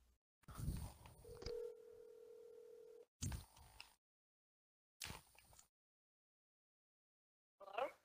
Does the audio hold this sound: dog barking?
no